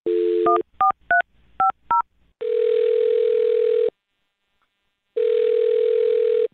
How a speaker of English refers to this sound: All right. Well, on that note, I'll dial the phone number and get him on the phone and see what he has to say.